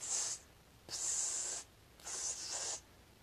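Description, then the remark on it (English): Three short bursts of bright, airy hissing, like squirts from a spray can, each lasting about half a second with brief silent gaps between them. No one speaks. “like a spray can.”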